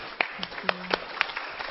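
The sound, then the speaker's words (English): Sparse audience applause given for women's reproductive health champions: a handful of scattered, irregular hand claps at a modest level rather than a full, dense ovation, with a faint low hum underneath. “I just want to take a moment and really, in a prayer-like way, give a round of applause for helping us.”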